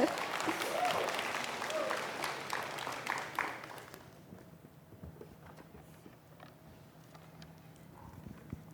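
An audience bursts into loud, dense applause, a fast crackle of many hands clapping that holds steady for about four seconds, then drops to sparse, scattered claps and quiet murmuring.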